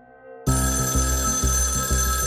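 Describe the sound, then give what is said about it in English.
Ronson's telephone rings loudly at a hotel, bursting in after a moment of near-silence and continuing as a bright, sustained ring with a steady pulsing rhythm. No one speaks. “When Ronson's phone rang next, it was Sandra.”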